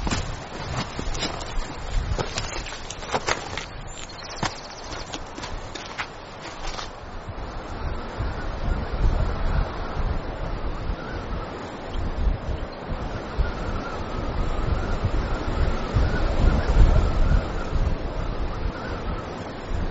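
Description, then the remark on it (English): Sea waves below the Sciara del Fuoco slope of the Stromboli volcano wash in a steady, rumbling roar, mixed with wind buffeting the microphone; sharp crackling bursts stand out during the first few seconds, and no one speaks. “Every meter we advance opens up a new panorama, a new view of the sea and the Schiara del Fuoco.”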